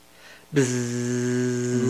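A loud, steady electronic hum kicks in abruptly after a brief quiet moment and drones on unbroken, layered with a thin high-pitched ring like audio feedback.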